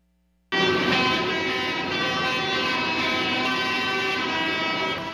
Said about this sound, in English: Flames and the blaring sound of tractor horns across Europe as farmers continue their protests against cheap food imports and tough environmental standards.